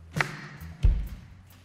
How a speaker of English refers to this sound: So this is an all skate, all right? And so ladies, I need you to participate in the groove. You're gonna clap on the snare drum, and I'm gonna help you out, okay? So here we go, ladies.